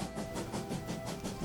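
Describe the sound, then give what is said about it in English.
A rattling old train car speeds along through a swampy area of a city, its wheels clattering in a quick, steady rhythm with rumbling low noise and hissing highs, loud throughout. “you all wake up and you're on a rather old rickety train car, traveling very quickly through what looks like kind of a swampy area of the city.”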